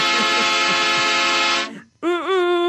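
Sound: train horn sound effect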